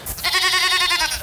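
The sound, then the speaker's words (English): A single goat bleats in one sustained, wavering call lasting about a second, loud, with a quavering harmonic tone and no talking, used as the sting for the regular feature Get My Goat. “So that's our transfer roundup for this week, and let's move on to our final and regular feature, Get My Goat.”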